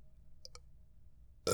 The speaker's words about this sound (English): Oh my gosh, there's the rest of the burp.